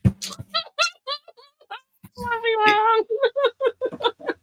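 A cat meows repeatedly: a run of short, clipped mews, then one long drawn-out meow, followed by another quick burst of short cries.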